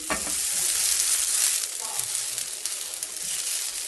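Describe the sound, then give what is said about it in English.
Natural-casing sausages from an American Coney Island hot dog kit sizzle steadily in a grill pan as they crisp, a dense crackling hiss that stays loud throughout with scattered sharper pops and no talking. “Then I fired up a grill pan to get the natural casing nice and crispy.”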